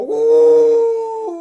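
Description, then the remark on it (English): A pack of dogs howl together in a long, steady, fairly loud wail that holds one pitch, then shifts downward near the end, with no talking. “Oh, and the second lot of dogs, loving the scent of rotting sheep, they charged after the other bone.”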